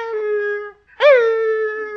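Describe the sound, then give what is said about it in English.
A voice imitates a retriever puppy's howl: a long, steady, whining wail, a brief break, then a second howl that swoops up and slowly settles, loud with no other talk. “Well, every time I started to leave, that little puppy went...”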